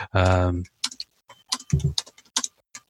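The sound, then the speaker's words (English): Someone types on a keyboard, answering a buyer's question about an eBay listing, with irregular clusters of sharp key clicks. A short voiced murmur comes just before the tapping, and another brief low vocal sound drifts in partway through. “tell me about anything else exciting while I'm typing this, because I can't talk and type at the same time.”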